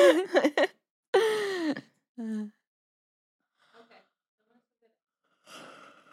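A drawn-out yawn with a strained, groaning vocal quality, surrounded by a few short breathy gasps and sighs, then quiet with faint breathing near the end.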